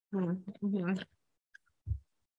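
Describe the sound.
A voice imitates the fluttering wings of a swarm of sparrows pouring out of a fireplace in two quick, buzzy vocal bursts, followed by a faint click and a brief low thump.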